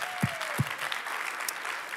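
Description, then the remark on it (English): An audience claps steadily in celebration of news that their building is going to sell, a dense wash of many hands with no break, joined by a couple of low thumps near the start. No one speaks. “I know more clapping.”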